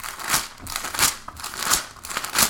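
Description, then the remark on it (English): Pages of a scripture book being handled and flipped to 2 Nephi 12:16, with about four soft, papery swishes and rustles in an uneven rhythm. No one speaks. “Let me grab my scriptures here.”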